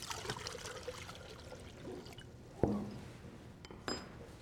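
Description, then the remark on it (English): Quiet pouring of liquid latex mold builder (natural latex, water and ammonia) trickling into water, with a soft splash and a few small drips and clinks against a container, with no talking. “So I'm going to pour some into the water here.”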